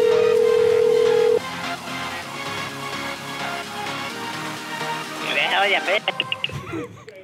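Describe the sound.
A steady telephone ringing tone hums loudly for over a second as a call is placed, then stops; muffled voices and room noise follow, with a quick run of short electronic beeps near the end.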